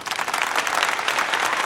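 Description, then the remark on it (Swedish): Steady applause from a group in tribute to Formula 1 driver Nico Hulkenberg's qualifying performances this year, dense overlapping claps at an even loudness throughout, with no voices over it. “Alltså vi har ju hört Nico Hulkenberg som är en duktig förare och hans kvalprestationer i år är ju faktiskt värda en applåd tycker jag, för de har ju varit riktigt bra. Applåd.”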